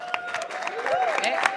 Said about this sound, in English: Okay, you guys, you need to decide who won that round. So we're going to do this by cheering. It's very scientific. So who thinks that Team USA, these guys to my right, won?